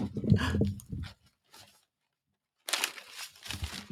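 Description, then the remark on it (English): A new puppy, Freya, chews and tears at paper in an office, giving loud crinkling, ripping bursts, then a short quiet gap before another burst of crunchy tearing. “You hear the sound of paper being chewed. That's my new puppy, Freya, slowly destroying all of the paper in my office.”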